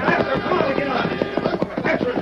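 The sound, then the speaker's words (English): Rapid, rhythmic hoofbeats of a horse galloping off, steady and fairly loud throughout, with indistinct voices mixed underneath. “Come on, let's ride. I'm with you. Hightail it, horse.”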